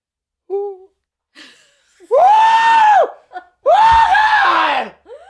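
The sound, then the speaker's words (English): A person imitates a terrified scream: a few short strained vocal noises, then two long, loud, wavering shrieks, with a brief pause between them. “Do the scream one more time for me.”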